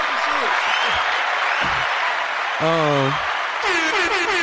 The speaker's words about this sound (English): Man, before we get started, let me just thank each and every last person. Round of applause.